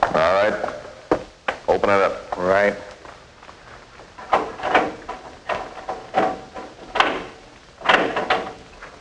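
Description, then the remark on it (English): A heavy steel door, approached by armed guards storming a bastion, clanks and grinds open in a few loud metallic bursts while a man's voice speaks over the start and muffled voices continue underneath. “Armed guards, some flown in from Leavenworth and McNeil Island, volunteers from San Quentin approach a steel door.”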